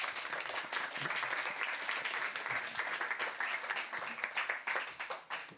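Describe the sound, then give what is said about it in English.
An audience at an LRB event applauds to welcome its guests, including author McKenzie Wark; many hands clap steadily in a dense, even wash that holds for several seconds without a pause, with no voices rising above it. “Thank you for listening to me and please give our guests a very warm welcome.”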